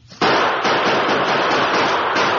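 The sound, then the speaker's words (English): A loud, dense barrage of rifle gunfire, including shots from the guns of the Lone Ranger and Tonto, erupts after a brief quiet start, the sharp cracks running together into a continuous crackling roar with a few stronger bursts standing out. “When they stop to reload, we'll have a chance to aim past this rock and return the fire.”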